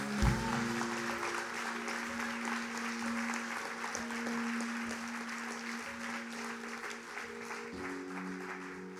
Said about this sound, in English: Give the Lord a clap. Amen.